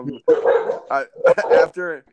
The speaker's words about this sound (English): Oh, wow, we got a doggy in the background. Jeez, Clifford, holy moly. Yeah, say hello to Clifford for everybody.